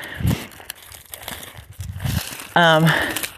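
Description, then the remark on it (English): Dry grass crunches and crackles underfoot as people walk over a grassy patch, in irregular, brittle bursts at a moderate level, with a brief voiced sound from a person breaking in near the end. “We walked over to the patch again, of course, if you can hear the grass crunching.”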